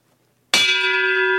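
A single loud church bell strikes once, its bright metallic clang ringing on with sustained, shimmering overtones after near silence.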